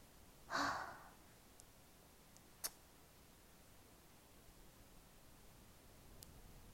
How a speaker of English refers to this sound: I'm just breathing. Just bear with me.